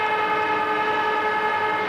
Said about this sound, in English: There goes the siren.